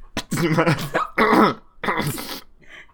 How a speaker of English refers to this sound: Sorry, I had to cough. I was suppressing a cough. Sorry, my colleague's sick.